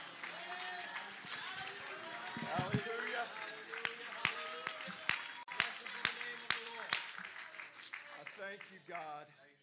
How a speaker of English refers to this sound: Would you one more time before you're seated, would you clap your hands unto the Lord? And would somebody shout, just make a declaration in this house tonight.